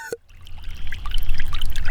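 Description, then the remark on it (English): Water from a pump, passing through tubing and a filter, trickles and dribbles steadily into water containers: a continuous splashing flow with bright gurgling droplets that grows fuller after a brief pause at the start. “At last, water flows through the tubes into our water containers.”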